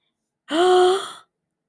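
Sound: gasp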